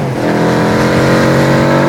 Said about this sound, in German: hörte er ein schweres Motorrad hinter sich. Es kam rasch heran.